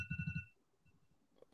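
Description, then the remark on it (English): An electronic alarm rings in a quick burst of about four rapid pulses over a bright, steady high tone, then cuts off into near silence before a short noisy burst at the end. “This alarm keeps going off.”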